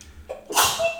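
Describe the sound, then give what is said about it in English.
A single sharp sneeze: a brief inhale followed by an explosive, breathy burst that trails off quickly. “Bless you, …. Thank you.”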